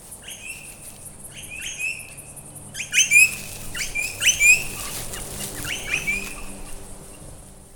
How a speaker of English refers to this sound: Maybe you can hear the wind rustling the leaves, and the crickets. The birds are a bit quiet at the moment. There's one.